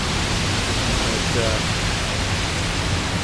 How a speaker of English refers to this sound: But this is still a good, heavy, soaking rain. I mean, it's raining hard. Like, you know, full-on shower hard for this entire time, the last 20 minutes or so. This is a gully washer.